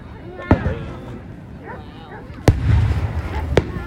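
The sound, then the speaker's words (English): Three sharp Independence Day fireworks bangs burst out at irregular intervals over a rumbling outdoor background with faint chatter and a low crackling wash after the second blast. “Happy Independence Day 2021 - Fireworks, Commentary and More”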